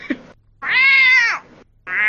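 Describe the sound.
A person's voice mimics a cat, giving a long drawn-out meow followed by the start of another, loud, after a brief squeak at the beginning.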